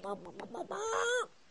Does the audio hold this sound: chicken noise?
yes